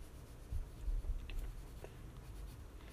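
Pencil shading shadows on paper, a continuous soft, gritty scratching of repeated strokes with a low rumble underneath. No one speaks.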